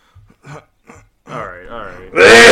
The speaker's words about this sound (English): All right. Anyway, now that my throat's clear.